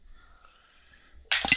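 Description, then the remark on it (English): After a near-silent stretch with a faint hum, a sudden loud burst of dice clattering and clicking together as they are fumbled onto a table. “Out of here so I stop fumbling with my dice.”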